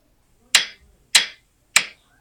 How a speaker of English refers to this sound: Okay, take your guesses. The answer was hammers hitting nails.